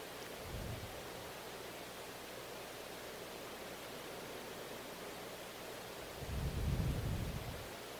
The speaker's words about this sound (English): It will talk as long as it wants, the rain. As long as it talks, I am going to listen.